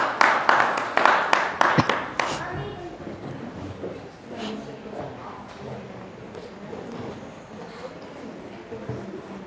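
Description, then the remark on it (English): An audience claps loudly for about two seconds in dense, quick bursts for the Sunday school as it leaves the building, then the applause fades quickly into murmuring voices and talk. “Give the Sunday school a clap.”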